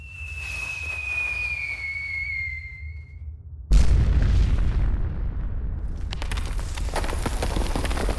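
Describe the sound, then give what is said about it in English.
A high whistling tone slides slowly downward, then a mini-nuke fired from a Fat Man launcher detonates at a cave, sealing it, with a sudden loud boom, followed by a heavy sustained rumble and crackling debris that keeps roaring to the end. “The assembled Blood Eagles cheered as they watched what had been Hawk's refuge sealed tight by the exploding mini-nuke.”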